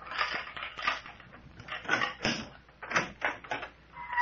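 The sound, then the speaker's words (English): A front door is thrown open by the Mayor, with a run of rattling wooden creaks and scrapes over a few seconds; no one speaks. “I sure am, and I'm going to throw open the door.”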